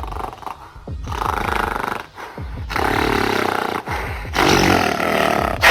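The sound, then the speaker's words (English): A gigantic gorilla with bright orange fur, blue skin and fangs reaching up towards its eyes roars and breathes heavily down, deep guttural growls rising in loud waves with brief pauses between, rough and rumbling throughout with no voices. “This gorilla has bright orange fur and blue skin, and it has fangs that go up towards its eyes, and it's breathing down at you.”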